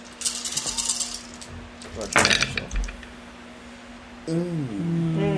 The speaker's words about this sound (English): Why you gotta be throwing the dice, my dude?